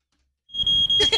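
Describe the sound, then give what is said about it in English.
A fire alarm blares suddenly at a wedding while a band is playing, after a moment of silence, its shrill, steady high-pitched tone sounding loud with bursts of pulsing, rising layers. “Alarms and lights and bells. I heard and it. That's it. That's the actual sound.”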